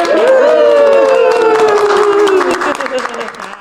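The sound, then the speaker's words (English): A live audience at a live show cheers loudly all at once, a dense wash of whoops and shouts with a sustained high yell riding on top, mixed with scattered clapping that tapers slightly toward the end. “And so, on that note, give us a cheer.”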